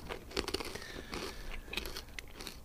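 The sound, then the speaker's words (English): Crisp crunching of potato chips being bitten and chewed during a blind flavour taste test, a quick series of sharp, brittle cracks and crackles over about three seconds, with no voices. “Have a bit of a, I don't know, whether you go the sniff, the lick, the chomp. He's gone for the crunch.”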